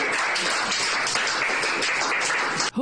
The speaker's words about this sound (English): Who's clapping, by the way?